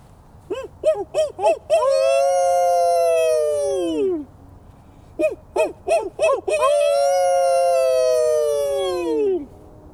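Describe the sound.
People by a lake imitate a coyote howl together to draw a response: each time a quick string of four or five rising yips leads into a long, loud, wavering howl that slowly slides down in pitch before trailing off.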